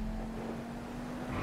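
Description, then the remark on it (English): Small RC truck's electric motor running steadily, a constant buzzing whine with a low hum and rumble, even in loudness, no voices. “But yeah, I've got everything from scale, trail, crawler truck, TRX-4, to the bigger Summit, which can push cars.”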